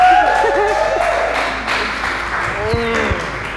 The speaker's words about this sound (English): Everybody, clap up for this.